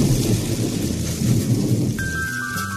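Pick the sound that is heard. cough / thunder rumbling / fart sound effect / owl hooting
thunder rumbling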